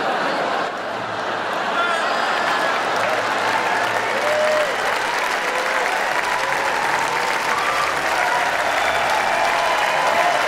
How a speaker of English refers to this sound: Meryl, stand up if you would. Everybody, please join me in giving Meryl Streep a totally undeserved round of applause, will you?